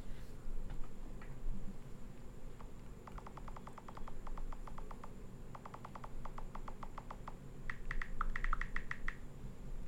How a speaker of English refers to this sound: I changed mine because it sounded like you were typing a lot.